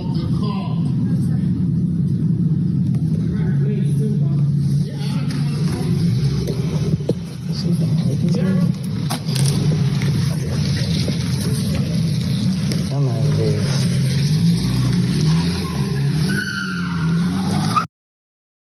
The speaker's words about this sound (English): drove up the alley at a high rate of speed, as you could hear when she was peeling off in that last clip